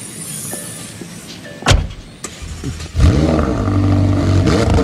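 A couple of sharp thuds, like a car door shutting, then the engine of a woman's car starts up and revs loudly and steadily as she leaves, with no one talking.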